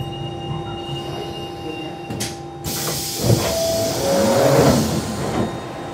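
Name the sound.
underground train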